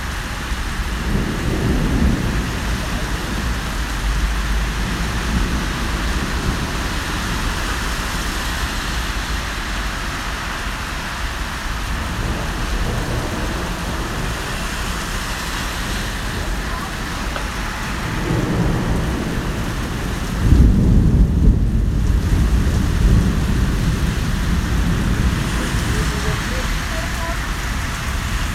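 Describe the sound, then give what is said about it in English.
Steady, dense rain hisses throughout a thunderstorm, recorded while standing in a bit of shelter, as low thunder rumbles roll, with a heavier crack of thunder swelling near the end. “I recorded a little bit of the thunderstorm while I was standing in a bit of shelter.”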